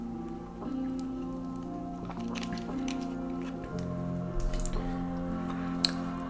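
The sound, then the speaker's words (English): Soft sips of purified water with small wet clicks and swallowing noises, scattered irregularly over a steady low background hum. Nobody speaks. “Let me grab a little beverage of this purified water here.”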